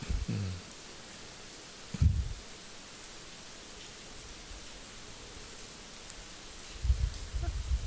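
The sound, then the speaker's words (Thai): Heavy rain with hail pours down on a parked car in a dense, steady hiss, with scattered sharp ticks and a few dull low thuds breaking through. No one speaks. “ก็ยังหลบได้ก็จอดอยู่ที่นั่นรอลูกเห็บซาอยู่พักใหญ่น่าจะเป็น10นาทีอ่ะนะฝนตกฝนก็แรงมาพร้อมกับลูกเห็บนะ”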